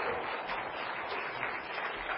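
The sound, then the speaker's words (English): Audience applause: a steady, dense wash of many hands clapping together, sustained at an even level for a couple of seconds with no voices standing out. “Can we give them a round of applause for how incredible that was?”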